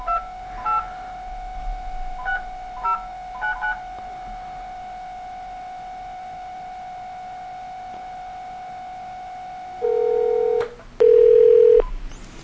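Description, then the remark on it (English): Touch-tone beeps dial a phone number in quick, irregular bursts over a steady humming dial tone, followed by a few longer, louder electronic tones near the end, as someone calls another person back on the telephone after a Skype call dropped. No one speaks. “Our Skype crapped out on us, so I am calling you back on the telephone.”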